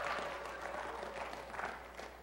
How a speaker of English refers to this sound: Clap. No, I'm not telling you clap. Okay, clap. Yeah, there we go. All right. Woo! Clap your hands. That's worship.